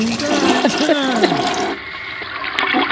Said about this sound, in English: Flush it 15 times.